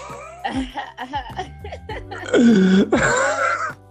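Loud throat clearing: a few softer guttural rasps, then two strong, harsh, drawn-out bursts, each lasting about half a second, with no speech.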